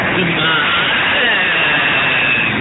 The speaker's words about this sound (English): That was a truck going past, by the way.